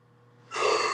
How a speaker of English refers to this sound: Right. Oh, big yawn.